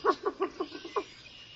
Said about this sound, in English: And now I want you to hear what we're not hearing enough of anymore. And these are birds in Louisiana.